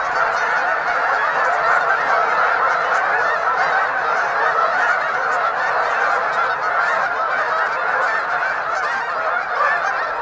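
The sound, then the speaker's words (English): A huge flock of geese rises from a marsh in the early morning, filling the air with a dense, unbroken clamor of overlapping honks, steady and loud throughout, with beating wings and stirring water, as hundreds of birds take flight almost at once. No voices are heard. “Countless birds floating in the marsh, covering most of the water, and then they all begin to leave.”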